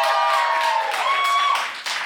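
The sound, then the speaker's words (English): An audience in Portland, Oregon applauds the cast of a script reading as they come on stage, a dense, steady wash of many hands clapping that stays loud throughout and tapers only slightly at the end. “So give a big round of applause for your cast as they come on stage right now.”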